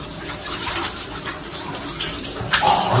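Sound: shower running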